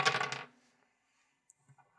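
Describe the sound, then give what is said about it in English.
Dice clatter and tumble across a hard table in a loud, rapid burst, then settle showing a total of ten, followed by a few faint, scattered clicks and taps. No one speaks. “Come on, Dice. You can do it for me just once.”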